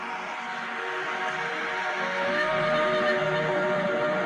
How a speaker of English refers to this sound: Noises, white noise, instruments, flute, hang, tambourine, animals, whale noises. Let's fucking hear the whale noise. Let's hear it for the whale noise.